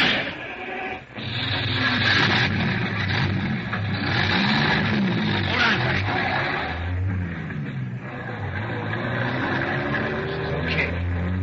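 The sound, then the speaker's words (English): A heavy truck engine roars and revs steadily, rising and falling in pitch as it pulls away out of an alley, loud throughout with a brief dip near the start. “Come on, that truck out.”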